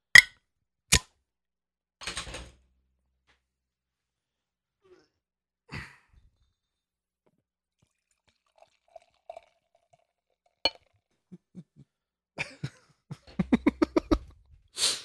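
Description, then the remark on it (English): Old 2014 beer of 12% ABV, from a bottle with a wax seal, pours into a glass in a quick run of gurgling glugs near the end, after several sharp, isolated clicks and knocks scattered through an otherwise quiet stretch. No one speaks. “It was a nice pour, huh?”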